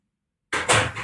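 After a moment of silence, a front door is shut hard on uninvited visitors: one loud, abrupt slam followed by a brief rattling resonance as it settles.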